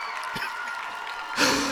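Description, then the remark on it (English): A steady wash of crowd applause and cheering that holds for a couple of seconds, then swells noticeably louder toward the end, with no speech over it. The crowd is greeting the hosts as they try to begin their introductions. “So I'm waiting for the crowd to die down.”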